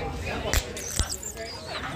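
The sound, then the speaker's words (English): Nitrogen stout being poured into a glass: two sharp knocks, then a steady fizzing hiss with thin, squeaky high streaks running through it, moderately loud throughout. “can you open one of those now and just pour it into the glass for me”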